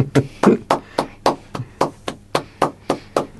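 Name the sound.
applause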